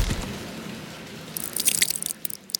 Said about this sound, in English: And with a thud and a wet splash, I failed to hit a stone floor with water splashing all around me.